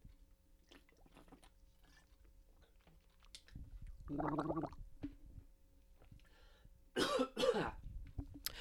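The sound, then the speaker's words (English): A few gulping, swallowing sounds as someone drinks water, followed by a couple of short, harsh throat-clearing bursts; no one speaks. “I'm gonna have some water because my voice is raw.”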